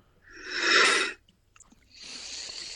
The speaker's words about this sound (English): That was a big yawn.